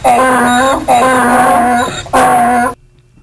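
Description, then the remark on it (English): A loud donkey bray from an electronic sound toy: three long, harsh honking blasts in quick succession that cut off abruptly into silence. “We haven't done donkey in a while. Donkey made it! Donkey made it!”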